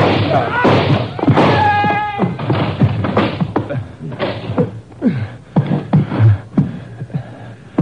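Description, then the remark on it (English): A door is kicked in with a run of heavy thuds and bangs at an uneven pace, a brief voice cutting in partway through. “Let's kick a hole in this door.”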